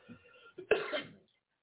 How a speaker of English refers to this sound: Y'all excuse that cough still getting me sometimes.